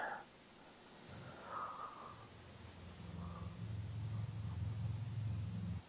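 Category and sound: human body sound, person blowing their nose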